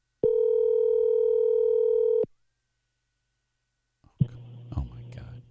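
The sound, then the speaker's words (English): A single long, steady electronic ringback tone from a phone call lasts about two seconds, followed by a brief silence before a voicemail greeting starts speaking on the line. “Now, I think this will set a record if it goes to voicemail for the third time.”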